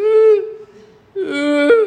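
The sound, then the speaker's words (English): A voice imitates a small child's whimper, a daughter whimpering at 2 o'clock in the morning: two tonal, nasal whines, the first steady and fading, then after a short pause a second wavering one that rises briefly near the end. “And you hear the whimper again.”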